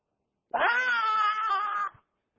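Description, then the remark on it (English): A two-year-old girl's single loud, drawn-out scream-like yell after being told no, sustained and high-pitched for over a second before cutting off abruptly, with no other sounds around it. “Stomps her feet, yells. She's getting really good at yelling.”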